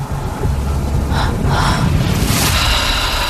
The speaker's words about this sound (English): A lot of heavy breathing.